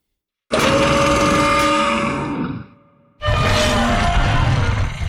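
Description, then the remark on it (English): Two loud, sustained mechanical dinosaur roars, one after another with a brief gap, blending a deep animal growl with grinding, whining machine tones. No voices accompany them. They are Grimlock roars made for the Hasbro Stomp and Chomp Grimlock Transformer toy, Grimlock being a Dinobot machine. “So you can hear a lot of mechanical elements in there as well as living animal sounds.”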